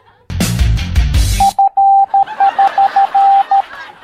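A brief loud burst of sound gives way to a steady, high-pitched Morse code tone tapping out a clear sequence of short dots and longer dashes over a faint background hiss.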